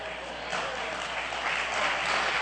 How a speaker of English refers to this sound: Yeah, I know you're clapping right now. It's nice to clap when you've secured your location.